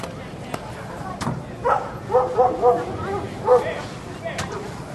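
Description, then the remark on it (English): A dog gives several short barks, spread irregularly across a few seconds, over a steady murmur of people talking in the background. “Someone had even brought a dog.”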